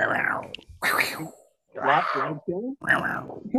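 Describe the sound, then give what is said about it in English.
Someone imitates a big cat's roar with a series of loud, throaty growling bursts that rise and fall in pitch, separated by short pauses. “You do a good roar.”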